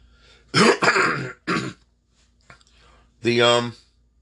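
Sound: coughing and throat clearing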